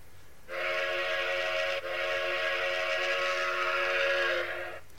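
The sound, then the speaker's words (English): A train barreling past on a trestle sounds a long, steady horn blast lasting about four seconds, loud, with a faint low rumble underneath and no voices. “He was hanging on to the side of the trestle, no easy feat, as it shakes immensely as the train is barreling past.”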